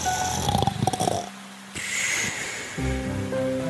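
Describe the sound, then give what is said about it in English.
Loud, rumbling snores of a wolf sleeping under a tree, a few rough drawn-out breaths in a row with a raspy, growly tone, with no talking. “After a while, they saw the wolf sleeping under a tree. He snored so bad that the branches of the tree were shaking.”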